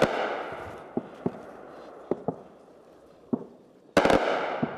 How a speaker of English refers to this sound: So the gunfire you can hear is Ukrainian troops trying to shoot down a suspected Russian drone. They heard it overhead.